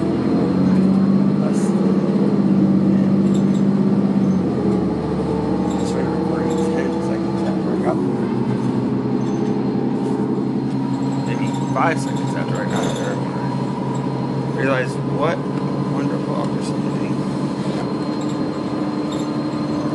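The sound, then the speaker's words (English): Three women chat in their native language while waiting at an outdoor bus stop, their voices steady over a constant low rumble of passing traffic and idling engines. “3 ladies talking in their native tongue, waiting for the bus, as I waited for the bus.”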